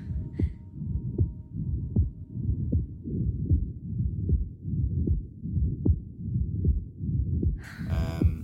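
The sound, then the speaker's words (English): A rapid, steady heartbeat from a scene in a film starring Chloe Grace Moretz thumps in a muffled, whooshing rhythm, continuous for several seconds, ending with a brief burst of brighter noise. “You want to hear the heartbeat?”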